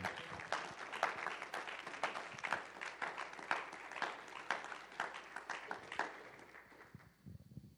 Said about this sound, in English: How many of you know the help that's been afforded you in life? Can you clap unto the Lord?